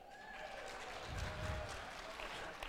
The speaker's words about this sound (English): They're being very generous in their applause, I can tell you that much.